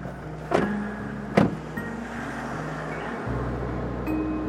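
Steady low engine rumble heard from inside a moving car driving two men back to port, with two short sharp thumps early on and a faint whirring shift near the end; no one speaks.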